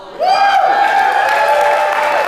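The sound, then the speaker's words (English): A crowd shouts and cheers, with a loud sustained whoop that swoops up at the start and holds a steady pitch for about two seconds over a wash of crowd noise. “I think you'll want to shout on this one.”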